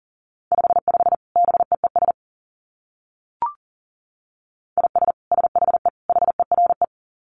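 Fast Morse code at about 40 words per minute: a steady, mid-pitched beep keyed into quick dits and dahs, sent in two bursts separated by a pause with a short click between.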